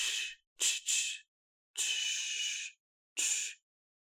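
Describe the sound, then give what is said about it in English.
A voice playing a barber imitates spraying hairspray with five breathy hissing bursts: a short one, a quick pair, a long drawn-out spray of about a second, then one final short puff, with no speech. “That's me spraying hairspray.”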